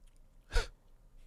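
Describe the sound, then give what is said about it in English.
A single heavy, breathy exhale, like a sigh, fairly quiet, with no talking around it. “You breathe.”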